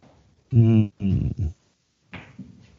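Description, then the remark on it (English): A dog lets out three loud barks in quick succession, followed by a quieter, lower grumbling sound. “Don't bark.”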